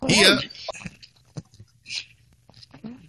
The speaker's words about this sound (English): Whoa! Wow, a lot of crunching going on.